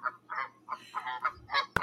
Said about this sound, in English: quit choking that goose.